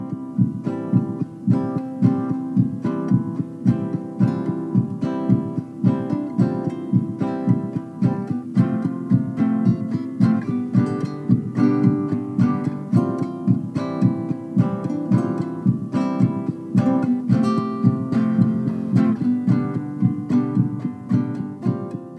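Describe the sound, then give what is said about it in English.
A full, steady song plays continuously, carried by a recorded heartbeat rhythm that pulses regularly underneath warm melodic instruments. No one speaks. “And that's kind of how we help that heartbeat really stand out in these songs.”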